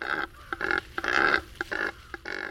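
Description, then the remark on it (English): A cormorant, which has only one set of muscles to control its syrinx, gives a series of about five harsh, raspy grunts in an uneven rhythm, with short clicking croaks between them. The sounds are coarse, mid-pitched and fairly loud, with no voices. “This cormorant has only one set of muscles to control its syrinx.”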